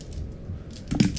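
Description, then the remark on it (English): A few small, hard clicks and clatters of purple dice being scooped up and put away, building to a brief rattle near the end. “Putting my dice because they keep stealing them.”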